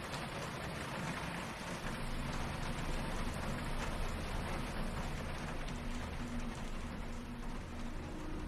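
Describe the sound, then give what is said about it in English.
Steady rain pattering on pavement, a dense, continuous hiss of drops with a low rumbling undertone, constant in level throughout and with no voices. “When the only sound is raindrops ricocheting off the sidewalk.”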